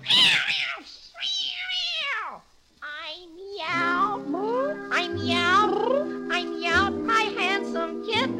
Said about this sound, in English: Meow. Meow. Meow. Meow. Oh, so you want to go out and see your boyfriend, do you, kitty?